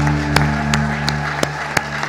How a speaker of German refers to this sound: Ganz einen kräftigen Applaus für unsere Gäste. Ganz herzlichen Dank fürs Kommen.